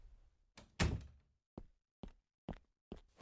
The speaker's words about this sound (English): He smiled at her a few seconds, but then let it fade from his face, fixing her with a serious glare as he closed the door.